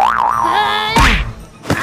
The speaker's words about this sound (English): Harley Quinn knocks him down with a spring-loaded punching glove.